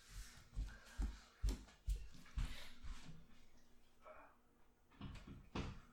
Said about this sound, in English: Oh wait, hold up. Do you mind if I close the door for a bit?